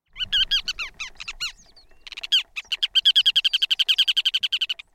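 Ruddy turnstone calls ring out alone: an opening burst of sharp chirps, a brief pause, then a fast, steady rattling series of bright, repeated notes.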